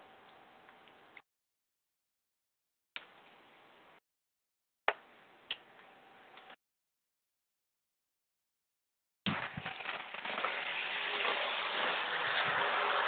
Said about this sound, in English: let me adjust this fan because it's kind of loud.